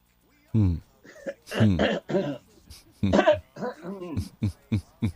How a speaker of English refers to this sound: This cough wouldn't leave me alone, my God.